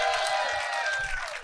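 A live audience bursts into dense, steady clapping mixed with crowd noise, loud, filling the whole moment before tapering slightly at the end; the audience is clapping to vote for a contestant.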